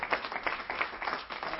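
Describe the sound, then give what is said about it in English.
A church audience gives the Lord a hand clap of praise in a dense, steady burst of applause, many overlapping sharp claps forming a continuous wash with no voices standing out. “Why don't we give the Lord one more hand clap of praise?”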